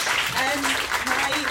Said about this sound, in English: Rapturous applause.